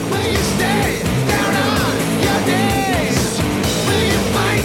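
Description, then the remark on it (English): High falsetto screams wail up and down several times over loud, dense, pounding music, the shrill voice sitting on top of a thick low-end throughout. “Love the screaming and the falsetto combo.”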